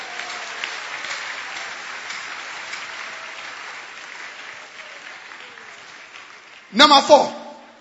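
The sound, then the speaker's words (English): A crowd claps steadily for several seconds as a clap of offering to the Lord, a dense, even patter of many hands, before a brief loud burst of voices cuts in at the very end. “Give the Lord a wonderful clap of offering.”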